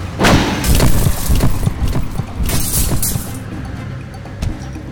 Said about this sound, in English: What the hell happened? The truck crashed.